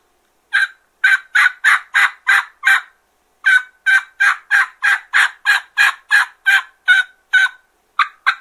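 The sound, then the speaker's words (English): A turkey call played with chopped yelp notes, demonstrating the mistake of chopping the note: two steady runs of evenly spaced, abrupt yelps, about twenty in all, with a brief pause between runs and no talking. “And let me try to demonstrate what you're probably doing. That's probably what you're doing. You're chopping the note.”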